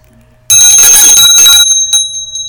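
A bicycle bell rings loudly and close up, a quick burst of bright metallic trills that lasts about a second, followed by a couple of softer dings as it fades out.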